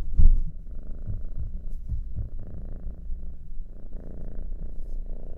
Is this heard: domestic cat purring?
yes